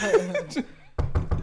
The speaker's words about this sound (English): Knocking at your door.